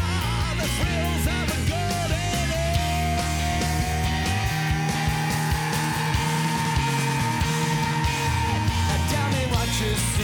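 Loud rock music builds with pounding drums and a busy bass line, and a raw vocal scream rises and holds for several seconds over the full band.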